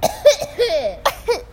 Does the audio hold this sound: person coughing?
yes